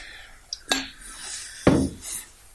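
A glass clinks twice, and each clink is followed by a bright, fizzy hiss of Hoegaarden beer being poured into a glass, foaming and crackling for a couple of seconds.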